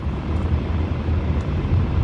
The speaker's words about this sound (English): Now, look. I'm in my car. That's why it sounds like that.